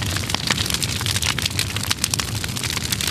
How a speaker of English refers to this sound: No, no, that sounds more like a dumpster fire, which 2020 was, but I was looking more for a train wreck.